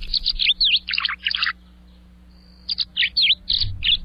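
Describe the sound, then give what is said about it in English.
An American tree sparrow, a cold-weather sparrow with a bicolored bill, sings two bright, quick phrases of sweet high-pitched notes and slurred whistles, separated by a short pause, clear with no one talking. “But today we're focusing on another bird with the word tree in its name, the American tree sparrow.”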